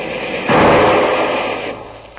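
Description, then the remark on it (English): A single loud shot from a Garand rifle cracks out, followed by a long, rumbling echo that slowly fades over a second or so. No voices are heard. “Hand me that Garand rifle”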